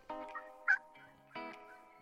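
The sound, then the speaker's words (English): A turkey gobble call used to call the birds: two rattling, rapid gobbles separated by a brief sharp yelp in between, clear with no talking. “Then it's time to call the birds.”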